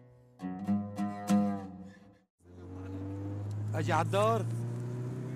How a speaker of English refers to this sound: Yeah, right, so this is one of those moments where you're, like, speeding down the road in a car with dudes with guns.